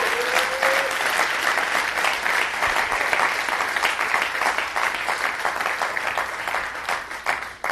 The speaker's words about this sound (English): Would you guys give the Lord a round of applause for that? Goodness gracious.